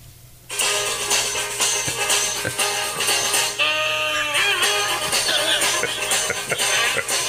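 A brisk, comedic saxophone chase tune kicks in after a brief quiet moment, playing loud, busy and continuous to the end with no one talking.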